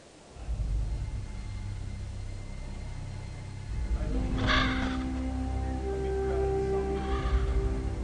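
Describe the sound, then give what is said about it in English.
A crow caws a few times over a steady low rumble of background ambience in the video game God of War 3, where a bird is pecking at the side of a mountain. The harsh calls rise briefly before fading back into the droning noise. “So basically what we're seeing for the audio podcast is there's a bird pecking at the side of a mountain.”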